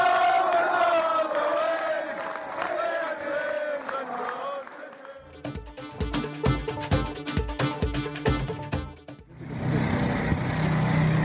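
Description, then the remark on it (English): A large crowd at a rugby ground roars and chants loudly after a fantastic victory, breaks into a few seconds of rhythmic, thumping claps, then swells back into sustained cheering. “The sound of a sand moor after a fantastic victory.”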